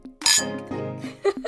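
Glasses clink together in a toast, a bright ringing chime up close followed by a few lighter taps and faint rattles as they settle.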